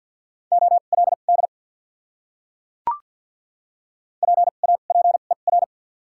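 Rapid Morse code beeps at 50 words per minute with double character spacing, at a steady mid pitch: two short bursts of dits and dahs separated by a brief click and a pause of silence, spelling out a word from a list of the top 300 words.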